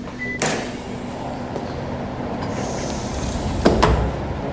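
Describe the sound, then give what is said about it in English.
The heavy, highly insulated door of a climate chamber in a thermal ergonomics laboratory, about 3 inches thick, clunks open with a sharp thud. A low steady hum follows, then another pair of knocks as it settles, with no one speaking. “So that's on the door, and the door is about 3 inches thick and has high levels of insulation to ensure that the heat that we're generating inside of the chamber doesn't leak”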